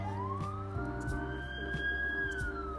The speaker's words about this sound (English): But hear those sirens? That's the second siren I've heard today.